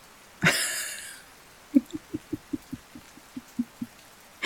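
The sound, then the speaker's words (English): A brief hissing rush of rain, then about a dozen soft drops tapping a window at a steady, even pace, with no talking. “Moving to the right, catching, two or three drops of it, rounding around the other ones, totally avoiding them, see that? Maybe they have rain cooties.”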